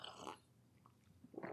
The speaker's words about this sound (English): Let's have a quick old sip of the tea. Mmm. That is a nice cup of tea.